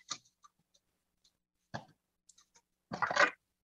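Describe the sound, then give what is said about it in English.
Strawberries being rinsed and shaken in a colander: a few short rustling bursts separated by small clicks and quiet gaps, ending with a louder, longer shake. No one speaks. “So now I'm just rinsing off the strawberries in a colander. Real quick. Shaking them a little bit.”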